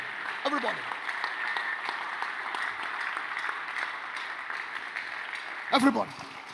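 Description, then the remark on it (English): An audience claps steadily in a dense, continuous wash of many hands, with a couple of brief voices calling out over it near the start and again near the end. “But everybody in the assignment, you're clapping.”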